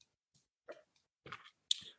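A few quick sips of an orange drink: small wet slurps and mouth clicks with a soft airy hiss, spaced over about two seconds, with no talking.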